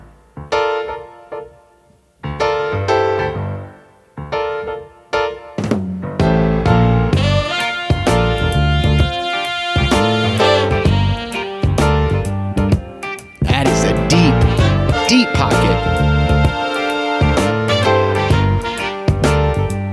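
A recorded song with a loping Purdie shuffle drum groove in swing time, swung hi-hat and snare pattern over bass and keys, playing loud and steady after a sparse opening of stop-start piano chords.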